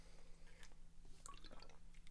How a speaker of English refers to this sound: So I'm going to take a nice swig of my vitamin water Power C Dragon Fruit.